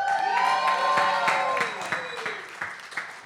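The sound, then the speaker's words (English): A crowd in the Bronx, New York, cheers and yells loudly when called on to make some noise, with scattered sharp claps and a high whooping cry that slides downward in pitch, the roar easing slightly toward the end. “Yo, Bronx, New York, make some noise.”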